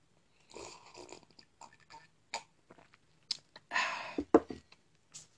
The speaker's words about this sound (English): So I'm going to take another sip of this wine.